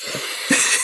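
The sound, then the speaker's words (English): Two short, breathy sniffs of a person sniffing their own armpits, the second a bit louder, cut through a steady airy hiss with no talking. “I'm sniffing my armpits.”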